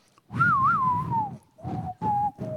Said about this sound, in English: I remember is my friend and I used to like whistle the tune.